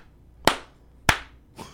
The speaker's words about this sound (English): Like, that's the quarterback clapping. Yeah. And then looking up at the box, looking back.